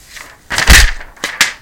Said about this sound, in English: That was me throwing the paper on the floor.